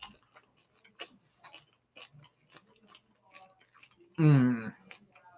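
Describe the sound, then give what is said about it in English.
Chewing of crispy pork skin with a fatty, dense inside and an outside like chicharrones: sparse, crisp crackles and clicks spaced out over several seconds, then a short, loud appreciative vocal sound near the end. “Dense, but the outside is straight up like chicharrones.”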